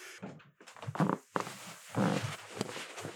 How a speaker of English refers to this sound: Okay, I'm hoping my mic cancels out that awful floor creaking sound that sounds like farts. It does not whenever you get up. Okay. Yeah. Well, I just want to clarify that that's what that is.